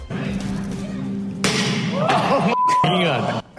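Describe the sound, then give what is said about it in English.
A heavy thump strikes the window of Tesla's new futuristic pickup truck at its unveiling, and the glass smashes with a sharp, bright crack, followed by a second impact and a person's startled exclamation over background murmur. “Tesla shares like the window of that truck getting smashed today.”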